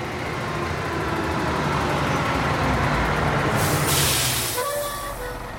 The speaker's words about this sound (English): Before long, a truck appeared, pulling to a stop in front of the branch that blocked its path.